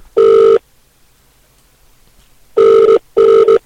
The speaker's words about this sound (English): Let's hope he answers. Let's hope it rings. Yes, it's ringing. It does help when you press it to ring, like.